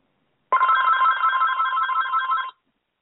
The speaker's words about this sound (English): I don't know. Somebody's trying to call in. Every time I get on the air, y'all, that phone starts ringing.